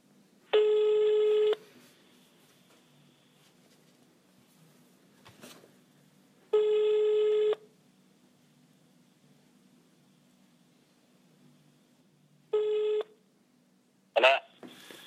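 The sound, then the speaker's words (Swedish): A phone ringback tone from a call to the speaker's brother sounds three times: long steady tonal bursts near 0.5–1.5 s, 6.5–7.5 s and a shorter one near 12.5 s, separated by quiet gaps with faint background hiss and a click near the end. “Då tänkte jag att vi skulle ringa till min bror”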